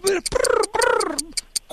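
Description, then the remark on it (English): Low, mellow cooing in a few drawn-out, wavering calls, fairly loud, with a faint steady ticking running underneath. “Birds.”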